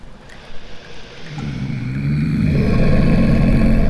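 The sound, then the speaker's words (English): A low, rumbling growl swells in about a second in, then holds steady and loud, a deep throaty drone with no voices over it. “Like a growling.”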